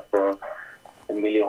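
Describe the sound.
A landline answering machine picks up a call during a live radio talk show, playing a short recorded voice greeting over the phone line in a few tinny, closely spaced bursts, fairly loud and clear.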